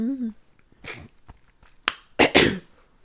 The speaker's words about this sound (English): I gotta keep clearing my throat, because in real life, not for play.